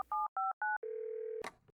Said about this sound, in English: Then the man pulls out his cell phone and dials.